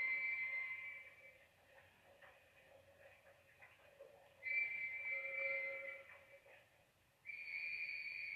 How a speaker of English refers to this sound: Policeman whistling for, you know, get somebody there because some girl, it was the Poppy girl that died, obviously.